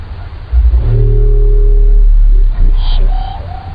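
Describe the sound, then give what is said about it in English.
A baleen whale call: a deep, sustained low moan for about two seconds, followed by a brief high metallic twang and a few short, thin tonal notes. No one speaks. “The low-frequency moaning part is typical of baleen whales, and it's that kind of twangy sound that makes it really unique.”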